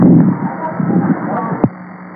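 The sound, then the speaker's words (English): A helicopter flying overhead throbs steadily over a narrow, radio-like channel, a low pulsing rumble with a constant hum beneath it and one sharp click near the end. “Negative at this time, and I can hardly hear you because there's a helicopter flying over me.”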